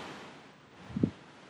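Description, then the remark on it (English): A soft, steady sea breeze hisses by the shore, with a faint airy rush and a brief low gust or thud near the end; no voices, quiet overall. “You hear everybody listen to the sea breeze.”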